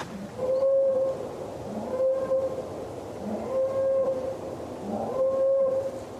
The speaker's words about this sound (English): And then the woods all about me echoed with a strange mechanical sound. A boar call.